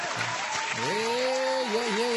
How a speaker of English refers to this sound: we are live from Norwich, Ontario. Hit the applause. Norwich, Ontario. There you go.